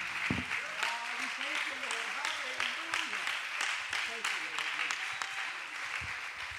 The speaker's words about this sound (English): In the name of Jesus Christ, one more time, let's give the Lord a hand clap of praise for what he is getting ready to do.